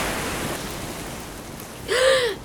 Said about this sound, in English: Head towards that big outcropping out there. The tide seems to be breaking for it. But watch out for waves.